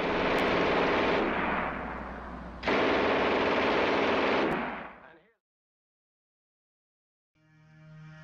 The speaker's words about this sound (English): Allied soldiers quickly came up with nicknames for the sound the weapon made, but the most common example was Hitler's buzzsaw, since US soldiers who had come from working in the mills likened the sound to a buzzsaw cutting through wood.